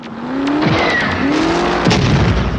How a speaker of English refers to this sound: I think it's like a Star Trek sound as the laser beam deflects.